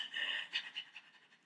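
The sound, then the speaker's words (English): A person imitates how their own dog breathes loudly: a long raspy huff followed by a series of quicker panting puffs that fade, then a sharp final exhale. “I'm saying when I say he's loud, I mean like he drew, like he breathes loud.”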